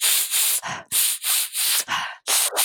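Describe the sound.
Rapid, rhythmic series of harsh, airy slurps made with the mouth while sipping olive oil to taste it, about seven hissing sucks of air in quick succession, loud and breathy, with no talking.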